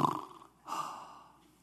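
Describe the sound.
A person imitates snoring with two breathy, rasping snore sounds, one short and one longer, with a brief pause between them.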